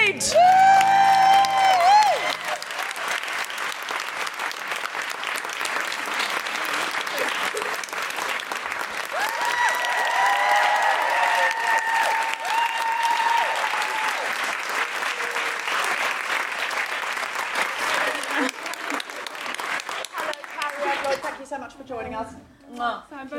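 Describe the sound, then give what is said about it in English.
A live audience claps loudly and steadily for over twenty seconds as a guest walks to the stage, with scattered whoops and cheers rising through it, before the applause thins out at the end as a few voices come through. “That's why I didn't want the applause to die, because”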